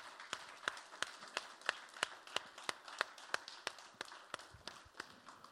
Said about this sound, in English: Can we give God a round of applause for his grace?